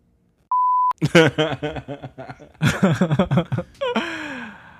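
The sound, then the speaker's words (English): A single steady censor bleep tone, pure and level, lasting about half a second, followed immediately by lively voices talking and reacting. “And smell. Beep.”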